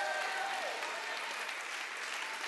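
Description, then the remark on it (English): A crowd claps their hands at a preacher's call, praising God as gracious. Steady, a dense, continuous wash of many hands that stays loud and even throughout, with a faint voice or tone briefly audible underneath near the start. “If he's been good, just clap your hands if he's been good to you.”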